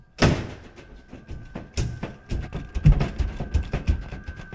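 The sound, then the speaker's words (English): A locked door out to the roof is shoved against its lock: two heavy thuds followed by a run of rattling knocks as it jolts in its frame without opening, fairly loud. “And when it's locked, I'll show you. You can't push it open.”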